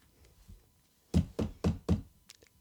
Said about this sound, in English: you hear a very quiet knock come from the outside.